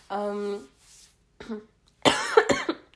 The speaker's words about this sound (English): Sorry for my coughs. I still cough here and there. I'm like recovering from COVID still. I'm almost 100% recovered, but I'm still coughing here and there.